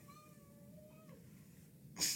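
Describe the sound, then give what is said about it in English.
A single soft, drawn-out cat meow that slides gently downward, heard faintly over a low background rumble, followed at the end by a short sharp burst of noise. “We have a special guest, the cat.”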